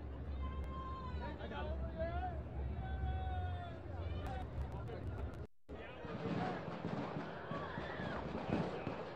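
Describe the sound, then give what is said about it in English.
A rapid series of sharp gunshots from a shooting cracks out in the background of a news reporter's recording, over a noisy crowd and indistinct voices, followed by a brief dropout and then continued commotion. “What you heard right there in the background, that bang, bang, bang, that's when the shooting occurred.”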